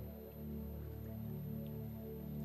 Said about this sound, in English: Just pour a little bit of water. That is survival. You just have a little bit. Survival. Can you see that? Pour more, a little bit more water.